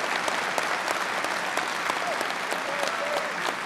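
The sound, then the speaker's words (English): A crowd claps and cheers steadily, a dense, even wash of applause with scattered whoops and shouts rising over it for the whole stretch. “Yes, cheer for them.”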